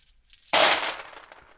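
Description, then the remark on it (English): A big handful of dice, 39 attack rolls in a tabletop wargame, spills out at once: a sudden loud clatter of many small hard clicks that rattles on and gradually dies down over about a second, with no voices. “And that was a lot of dice.”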